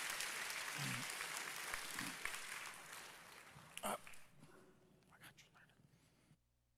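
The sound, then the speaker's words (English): An audience claps in praise of the Lord after a prayer, a dense, sustained burst of hand clapping that fades out gradually over several seconds, with a few scattered voices and faint calls mixed in. “Let's give the Lord a hand clap praise.”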